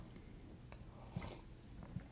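Quiet, close-up sipping of tea: a couple of soft, brief slurps and wet mouth sounds spaced about a second apart, with no talking.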